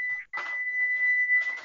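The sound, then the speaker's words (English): A phone's text message alert, likened to a microwave beep, sounds as a steady, high-pitched electronic beep, briefly cut off near the start and then held for over a second, with scattered rustling noise around it. “Oh, hey, that microwave? Was just your mom texting me.”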